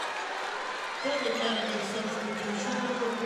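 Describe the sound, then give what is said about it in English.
A large crowd of Thornton Academy fans at a basketball game roars steadily, swelling louder after about a second into a sustained wave of shouting and cheering voices, reacting to a referee's foul call. “hear the Thornton Academy crowd and their agreement or disagreement with that call.”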